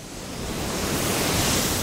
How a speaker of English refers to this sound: We stand above a surging spray of water that's about to leave the plant and enter the Willamette River.